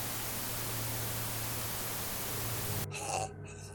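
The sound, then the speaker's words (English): Steady, loud hiss of radio static fills the air for about three seconds with a faint low hum beneath, then cuts off abruptly, leaving a brief quieter, filtered-sounding tail. “when a radio crackles to life. It broadcasts white noise for a few seconds, and then a voice that sets you on edge.”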